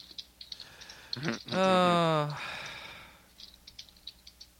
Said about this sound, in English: So, what you guys typing? I hear lots of typing.